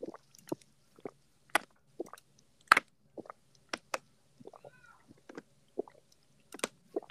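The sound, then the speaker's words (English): Someone chugs water from a bottle in quick succession, a dozen or so wet swallowing clicks spaced about half a second apart, with near silence in between. “Watch me chug this water bottle.”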